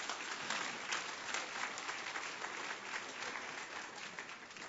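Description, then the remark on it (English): An audience breaks into sustained applause, a dense, steady wash of many hands clapping for several seconds with no voices standing out. “Let's applaud the Lord for that.”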